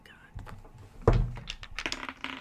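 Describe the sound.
Dice drop onto the ground with a solid thunk, then clatter and tick in a scattered run of quick clicks, moderately loud, with faint voices murmuring in the background.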